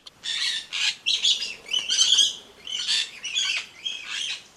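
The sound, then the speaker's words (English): A Socorro parakeet, a green parrot of the scrubby upland forests of Socorro Island in the Pacific Ocean, gives a run of harsh, raspy squawks and chirps, about eight bursts in quick succession, fairly loud with no voices. “The island's scrubby upland forests are home to the Socorro parakeet.”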